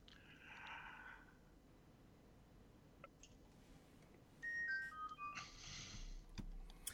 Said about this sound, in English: Your phone was impeccable timing on that. Definitely needed that.